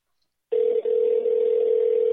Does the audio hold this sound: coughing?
no